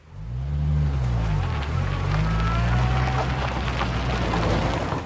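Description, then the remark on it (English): The engine of a stuck, grounded minivan revs hard and steadily, its low drone rising and dipping in pitch as if straining without moving, with a constant hiss like rain or churning water around it. “Let's just get the minivan back into the safe zone right now.”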